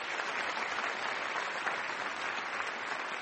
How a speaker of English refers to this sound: And I'd just like to invite one more round of applause for Robert Rosenkrantz.